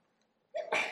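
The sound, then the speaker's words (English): A woman sneezes once, sharply, after a moment of near silence, starting with a quick inhaled catch and ending in a loud, bright explosive release. “Bless you.”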